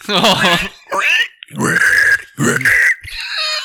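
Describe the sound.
A person imitates a pig, making several loud, strained squeals and grunting bursts in quick succession, with short pauses between them.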